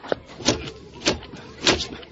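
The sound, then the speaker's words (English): A cash register drawer that won't close is shoved shut again and again, giving four rattling, scraping clunks at uneven intervals, with no one talking. “Just keep your money and close the register drawer.”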